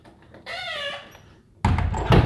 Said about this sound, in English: I closed the door. That should help.